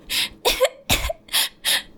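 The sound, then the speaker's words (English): A person acts out a fit of coughing: five short, harsh, breathy coughs in quick, even succession, with no other sound around them. “And when he coughs, you see fresh blood speckle his lips.”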